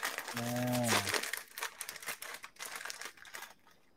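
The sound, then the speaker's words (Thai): Crinkly plastic packaging of an instant noodle pack being unwrapped, with a dense run of sharp crackles and rustles that thin out toward the end, and a brief low humming tone at the start. “ใช่แล้วล่วงเป็นบะหมี่กล้อง โอเคเดี๋ยวจะแกะดูนะฮะว่าวันนี้มันมีอะไรบ้างนะฮะ”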